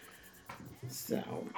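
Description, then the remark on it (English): A dog, LaVolture, barks faintly in the background, a couple of short muffled barks from the living room because he heard noises outside, while people talk. “So today, aside from LaVolture the Wonder Boo Boo barking because he heard noises outside, and he's in the living room.”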